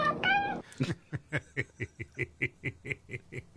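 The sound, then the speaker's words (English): A cat gives a short, two-syllable meow that sounds like "okay" in answer to its owner singing "If you're happy and you know it, say okay," followed by a run of rapid, rhythmic bursts of snickering laughter. “Does he have to sing that song to get it? The cat to say okay?”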